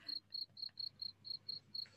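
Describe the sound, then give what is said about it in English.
Crickets chirp in summer in a steady, evenly spaced pulse, about four bright trills per second, with a soft low background hum and no voices. “In the summer here, you hear more crickets, and then it's like, oh, that sounds like Malaysia.”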